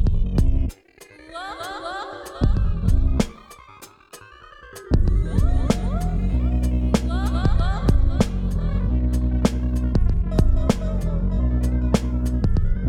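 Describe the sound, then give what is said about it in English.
Several voices chant a wavering, droning melody together, with a steady sharp beat ticking underneath; it starts sparse and thin, then swells into a fuller, continuous chorus after a few seconds. “But I can hear them chant a melody. A polyphonic hum.”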